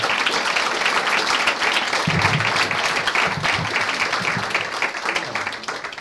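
A crowd breaks into sustained, dense applause, loud and close, with scattered claps blending into a steady wash of sound that holds for several seconds, with a faint voice briefly underneath.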